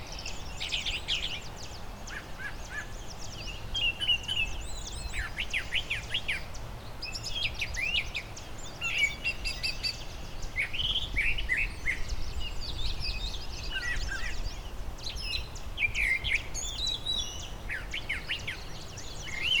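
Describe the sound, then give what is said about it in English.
A thrasher sings from high up in a tree in a parkland meadow with shrubs and tall trees: repeated bright, warbling phrases over a steady outdoor background hum, with short pauses between bursts; other faint chirps sound around. “They might stay low down sometimes and sing.”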